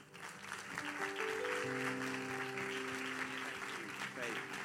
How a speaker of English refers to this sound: Let's all stand together. I think another round of applause would be in order.